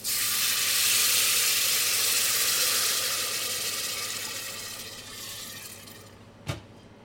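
Loud, hissing sizzle as water is poured into a hot pan of lightly browned onion and noodle seasoning, a broad steamy roar that gradually fades over several seconds, ending with a brief clank near the end. No voices.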